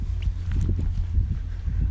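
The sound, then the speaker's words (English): A Rolls-Royce Merlin engine on a two-seater Spitfire training aircraft drones overhead as it flies over: a steady, deep, throbbing rumble with a low hum running underneath, holding fairly even throughout with no voices. “It's a Rolls-Royce Merlin powering a Spitfire. It's just flown over.”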